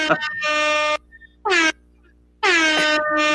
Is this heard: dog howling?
no